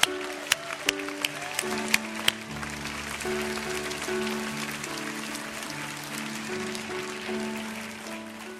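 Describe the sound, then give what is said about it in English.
An audience gives the Lord a hand clap of praise, clapping steadily in a dense, continuous wash of applause lasting several seconds, while sustained organ or keyboard chords play underneath, with a few sharp hits near the start. “Would you give the Lord a big hand clap of praise tonight?”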